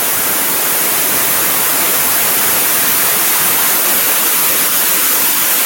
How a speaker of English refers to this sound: You're muted and very staticky.